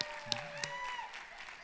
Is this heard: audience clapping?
yes